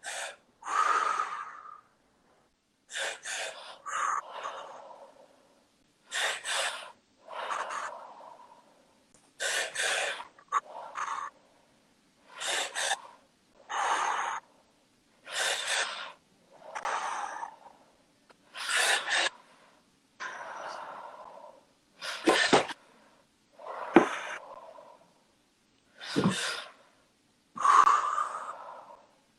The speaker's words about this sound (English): And we're just going to breathe sharply into the stomach, sharply into the chest, and then release. So I'm going to show you first, and then you can follow me. And it goes...